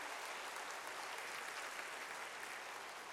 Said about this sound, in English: Let's give these guys an applause. They were on their feet.